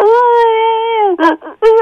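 A loud, steady howl holds for about a second, then breaks into a few sharp, choppy yips, with nothing else in the background.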